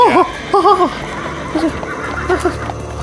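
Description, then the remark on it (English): A person imitates with their voice the whinny of a horse named Tuvia being pulled up to rear back, a loud, wavering neigh in several quick rising and falling bursts over about three seconds. “I'm pulling up on Tuvia and making him rear back.”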